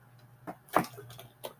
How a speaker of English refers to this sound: Yeah, so hold on, let me get a drink of water. You guys just hold tight.